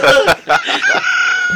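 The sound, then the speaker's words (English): A loud rooster crows once, opening with a few choppy bursts before stretching into a long, drawn-out final note that trails off abruptly. “Ayam betul lah.”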